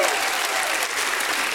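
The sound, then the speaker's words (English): A church audience applauds as a hand clap of praise to Jesus, with dense, steady clapping that holds at an even, fairly loud level throughout without letting up. “Go ahead and give him a hand clap and a shout of praise.”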